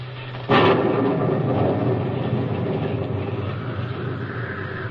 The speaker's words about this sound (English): I don't know how long it was, but then suddenly I felt the rain and realized that the terrible noise in my ears was thunder and wind.